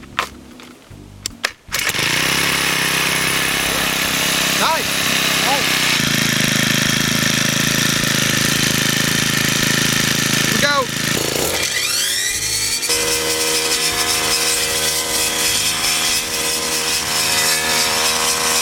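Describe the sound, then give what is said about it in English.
A brief whir from a Troy-Bilt electric starter, then a small gas engine catches and roars loudly and steadily, its pitch sweeping up and down briefly midway before settling into a constant drone. “Troy-Bilt also sent along this electric start”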